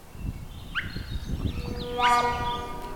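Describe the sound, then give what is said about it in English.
Swainson's thrush (Catharus ustulatus) song recorded live at Heartbreak Meadows, northeast Oregon: fluty, whistled phrases, ending in a bright upward-spiraling run of notes, over a steady low rumble of background noise. “is the great Swainson's thrush, Catharus ustellatus.”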